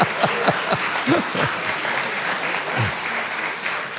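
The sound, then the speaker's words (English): A church audience claps steadily for about four seconds as a clap offering during a sermon, a dense wash of applause at even loudness, with a few faint voices calling out underneath. “Now give yourself a clap offering just in case you got mad.”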